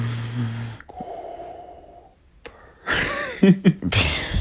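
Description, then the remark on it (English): A voice imitates a man's heavy, labored breathing as he walked past, likened to a steam train, with a few loud, rasping huffs and wheezy inhales and short snorting bursts near the end. “It's like a steam train. It's how heavy he was breathing.”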